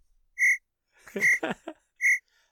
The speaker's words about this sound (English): Cricket. Cricket. Hold on, I got it.